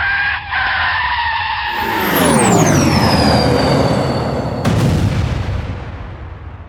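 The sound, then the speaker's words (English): A loud, rushing roar with a high whistle sweeping steadily downward, then a sudden heavy blast bursts through and rumbles away as Cal explodes, its shockwave knocking a medium-sized asteroid off course. No one speaks. “As Cal exploded, emitting a shockwave that knocked only one medium-sized asteroid off its course”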